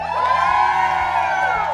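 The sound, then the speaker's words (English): A big crowd at Camp Voitiwa, a mountain camp outside Jamestown, Colorado, cheers loudly, many voices whooping and shouting together in a steady, high-pitched roar that holds for about two seconds without a break. “And we got a big crowd with us today.”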